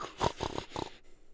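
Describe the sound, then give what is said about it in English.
A voice imitates snoring with a short, rattling, throaty snore made of quick pulsing bursts, lasting under a second before trailing off into quiet. “I'm the one that snores like a chainsaw.”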